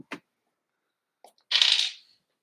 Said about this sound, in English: You need to throw that dice in the floor. I rolled a 3.